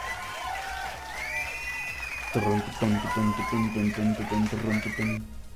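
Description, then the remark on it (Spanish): A crowd cheers and whoops with scattered applause for several seconds. The sound is fairly loud and lively, with rising shouts early on and a steady, rhythmic wave of cheering toward the end. “Un aplauso.”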